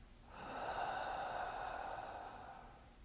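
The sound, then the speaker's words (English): A single slow, steady breath in through the nose and out again during a breathing exercise, clear, a soft airy rush lasting a few seconds before fading out. No one speaks. “I am breathing in. Breathe in through the nose. Pause. And exhale.”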